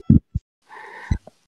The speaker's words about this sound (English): I can hear your heartbeat. I can hear your heartbeat, for your sure.